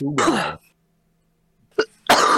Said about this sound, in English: I'm sorry I didn't hear the name or the question. There was this big sneeze.